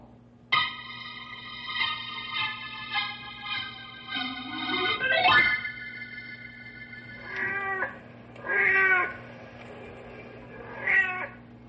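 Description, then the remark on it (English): Blackie, a big pet tomcat on the prowl, lets out a long, drawn-out yowl that climbs in pitch, followed by three shorter, separate meows, all loud over a low steady hum, with no one talking. “The big tomcat you're hearing on the prowl is called Blackie.”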